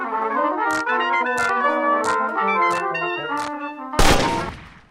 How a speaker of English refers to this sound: Heads turn at the sound of the gunshot, echoing out from the north. A dozen masked riders with torches descend on the town from the hill, hollering, setting fire to houses and shops, and shooting down party balloons